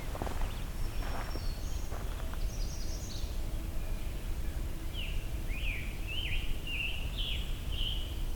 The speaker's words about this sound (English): Oh, there's a black Bernian warbler here too.